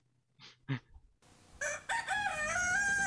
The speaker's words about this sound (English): This is when the rooster crows.